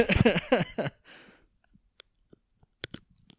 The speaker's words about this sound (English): It's time to record Pepper Chewing.